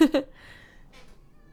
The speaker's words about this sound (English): Sorry, my cat is just meowing in here. I apologize.